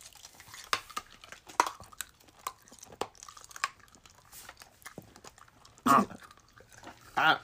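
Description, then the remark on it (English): Crisp crunching of a sweet, fat-free, banana-flavoured snack being chewed, with irregular bites and sharp crackles, growing louder in two heavy crunches near the end. “That's crunchy.”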